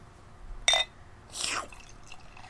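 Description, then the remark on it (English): Kirkland (Costco) beer, a Gordon Biersch Pale Ale, is poured into a glass: a brief splashy burst, then a short fizzing rush of liquid, fairly quiet, with no talking. “And the pour.”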